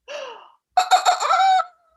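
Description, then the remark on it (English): A hen gives two fairly loud calls: a short falling cluck, then after a brief pause a longer, harsher squawking cackle that pulses slightly before cutting off. “And the hen, he flew to the woodcutter in the forest and said, oh, please, Mr.”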